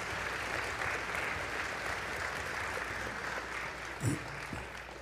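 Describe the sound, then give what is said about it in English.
An audience applauds the people who have just shared a word, in a steady, dense wash of clapping that carries evenly through the whole stretch, with a brief louder bump near the end and no speech over it. “Let's have a word and applaud for them.”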